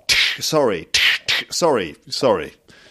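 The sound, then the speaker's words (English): A voice imitates slaps to the face with a quick series of sharp, hissy 'tsh' bursts, each trailing into a short voiced sound, fairly loud, about four in a row. “That's me sort of slapping you around the face. Tsh, tsh.”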